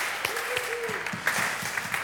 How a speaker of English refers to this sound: So thank you. Second thing to keep... Yeah, let's give him a clap.